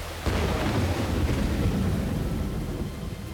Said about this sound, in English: After the men had been out on the road for a while, a torrential downpour began.